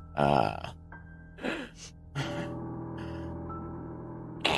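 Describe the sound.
A voice imitates heavy breathing from behind a door, with several loud, rasping breaths and gasps at uneven intervals, over a low sustained drone.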